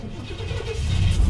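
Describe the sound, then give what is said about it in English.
A van engine is started and revved up, rumbling to life with a deep, steady low growl that swells a little louder over a second and a half, with no talking over it. “Yeah, the podcasters haven't heard the fucking van yet. Rev her up.”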